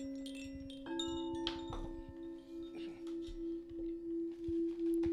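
A bell rings with a sustained, humming tone and bright overtones, struck again about a second in, then swelling and pulsing steadily as it rings on without fading.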